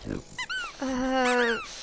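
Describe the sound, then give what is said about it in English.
A dog named Oscar gives a brief low growl, then a short squeaky yelp and a drawn-out, whiny grumbling moan that rises at the end, with no talking. “He's a grumpy old thing, but he's harmless. He growled.”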